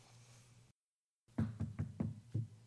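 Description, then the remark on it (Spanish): Five firm knocks on a door in a quick, slightly uneven rhythm, fairly loud, after a brief quiet pause with a low hum beforehand. “Estoy tocando la puerta.”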